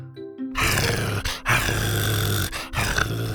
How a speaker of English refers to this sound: Buck growled playfully and peeked out from behind the plant before trying to hide his big head again.